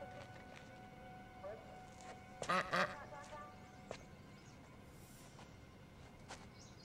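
A duck, Gary the Duck in a film scene with Vin Diesel's character, gives a short run of loud, nasal quacks, two or three close together, over a steady low background rumble with a few faint clicks and calls scattered around.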